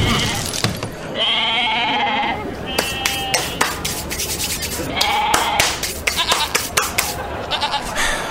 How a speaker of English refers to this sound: Goats.